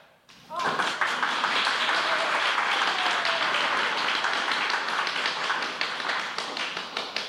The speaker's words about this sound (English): Okay, now our applause sign is typical of shows that had live audiences. So when it lights up, you applaud, and when it goes off, you stop applauding.